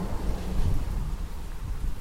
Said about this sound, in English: But yeah, it's quite rainy and a bit windy and a bit chilly out here.